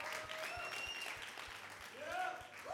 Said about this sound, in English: Why don't you give God a loud round of applause?